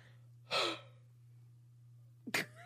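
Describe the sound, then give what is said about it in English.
A breathy yawn lets out a short airy exhale, followed a couple of seconds later by a quick, sharp breath with a faint voiced tail, all over a steady low hum. “Random yawn.”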